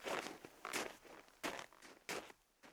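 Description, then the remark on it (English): Footsteps crunch through snow at a steady walking pace, about four or five crisp, gritty steps with no voices. “The girl laughed and nodded at the snowman, and then tripped away over the snow with her friend. The snow creaked and crackled beneath her feet, as if she had been treading on starch.”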